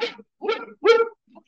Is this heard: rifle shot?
no